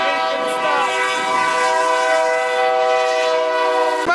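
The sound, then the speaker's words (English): A slow-moving freight train at a siding sounds its horn in one long, steady, loud blast, the chord holding unbroken over a low rumble of the train on the track. “Right, here comes the train.”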